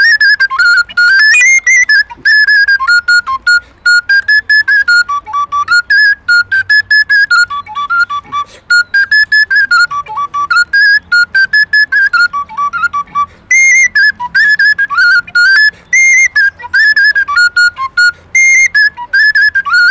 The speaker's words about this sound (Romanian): Avem fluiere, piculine, ocarine, fluier cimpoi și un instrument care imită cimpoi, se numește ticvă. Și putem să auzim și noi cum sună ticva asta?